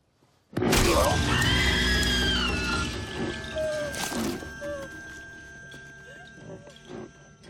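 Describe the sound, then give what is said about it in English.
A rearing goat lets out a sudden, loud, harsh cry that bursts in at full volume and wavers, followed by a second blast and softer scattered noises as it fades. “The famous rearing goat.”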